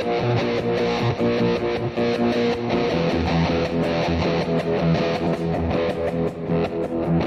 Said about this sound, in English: That's what this compressor is. This is a Siren compressor. Add the micro synthesizer.